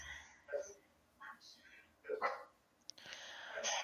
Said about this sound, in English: Charlie is barking at the horses.